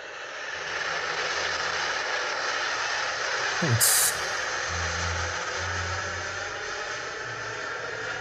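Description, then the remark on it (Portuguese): An airplane taking off at an airport: a loud, steady jet roar with harsh hiss fills the whole clip, low droning tones underneath, and a brief sharp burst midway. A voice briefly exclaims. “O avião tá decolando aqui.”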